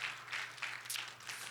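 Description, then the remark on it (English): A crowd claps their hands in praise during a sermon, a steady, dense patter of overlapping claps, moderately loud and sustained throughout, with no voices standing out. “Somebody clap your hands and give him praise right now.”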